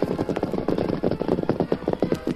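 Several horses gallop at a fast, steady pace through the night, carrying three riders toward the Lone Ranger's camp, their hooves pounding out a dense, rhythmic clip-clop, continuous throughout, with no voices.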